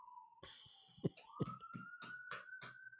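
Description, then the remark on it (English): An ambulance siren outside an apartment near a hospital sounds as a steady, mid-pitched tone that slowly climbs in pitch, with sharp rustling, crinkling bursts from Harley the cat chewing and crinkling plastic breaking over it every few moments. No one speaks. “Sorry, I live close to a hospital, so these things happen.”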